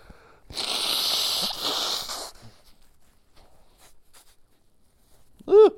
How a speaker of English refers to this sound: I gotta blow my nose.